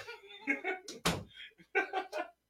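A door rattles and bangs with one loud clunk in the middle as a small child tries to open it, surrounded by voices talking or exclaiming before and after.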